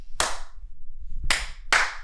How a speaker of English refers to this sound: The more unique the waveform, the easier it is to match up, right? So if it's like a bunch of us clapping, it's like, oh, that's that.